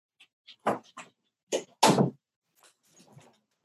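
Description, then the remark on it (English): Pet dogs, one named Benson, barking in a short, uneven volley: a few sharp, loud yaps, then a longer, heavier bark, trailing off into faint scuffling and softer sounds. “Or they hear something and it's just setting them off.”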